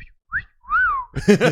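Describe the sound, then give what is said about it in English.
Someone imitates a whistle heard randomly in a gym: a quick rising chirp, then a longer, louder whistled tone that swoops up and falls away, followed by a brief burst of voice. “You're a janitor like cleaning up the cafeteria and you hear a whistle in the gym, like just like randomly.”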